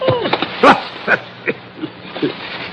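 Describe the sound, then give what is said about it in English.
A small dog growls and snarls in short, uneven bursts while holding a shoe, with a few yippy whines mixed in over a faint background hum. “Look at the little beast, will you? What's he got, a rat?”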